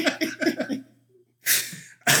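Two loud, harsh coughs ring out, separated by a short pause, after a run of rhythmic voiced vocal sounds and a moment of quiet.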